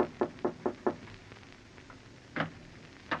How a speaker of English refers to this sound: Your throat feels a little tight as you go upstairs and knock on the door.